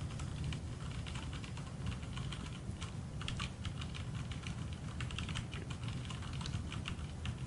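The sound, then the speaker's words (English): Rapid, continuous typing on a computer keyboard by a blindfolded typist, a dense flurry of clicky keystrokes with no pauses, fairly loud, with no voices. “Did you give me the same keyboard?”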